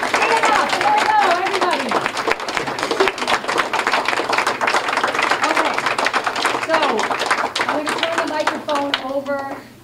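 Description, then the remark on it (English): An audience at American Legion Post 440, at an event titled "The U.S. Constitution and Sharia: Can they coexist?", applauds steadily for nearly ten seconds, a dense, even patter of clapping mixed with overlapping voices calling out, before tapering off at the very end. “So please join me in giving the loyal American patriots here at Post 440 a bigger round of applause.”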